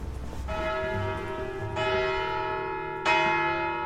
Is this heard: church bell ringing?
yes